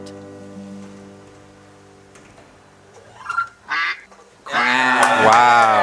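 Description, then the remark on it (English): Ducks quack loudly near the end of a performance, a dense run of harsh nasal calls, after a few shorter bursts; a steady low hum runs underneath throughout. “The ducks did not faze you guys at all.”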